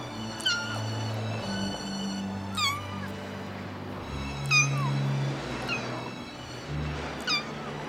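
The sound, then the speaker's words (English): A kitten meows repeatedly, about five high-pitched, wavering cries spaced a second or two apart over a low, steady background hum. “There was no answer to the little one's cries.”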